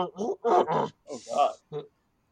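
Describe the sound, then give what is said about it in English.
A human voice imitates a horse grunting, a few short strained vocal bursts in quick succession, fairly loud, with brief pauses between them. “Yeah, you can hear the horse grunt like.”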